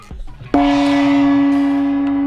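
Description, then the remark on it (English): A single loud gong strike rings out after a brief murmur, its deep metallic tone sustaining and shimmering steadily without fading for the next couple of seconds. “And as I like to say, and get that gong ready,”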